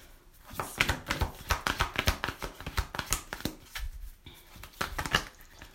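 Tarot cards are shuffled in quick, uneven bursts of papery riffling and soft slaps, with a few brief pauses, then more flicking as cards are drawn for a tarot reading. No one speaks.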